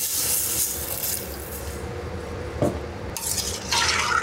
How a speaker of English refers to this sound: So we're gonna add the water, a liter and a half of water. Ah, can you hear it?